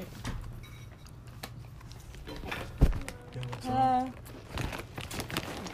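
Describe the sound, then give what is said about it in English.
A door opens with a sharp latch click followed by a short creak as a roommate enters the room, amid shuffling movement and muffled background voices. “Theater kids are trying to get in the door.”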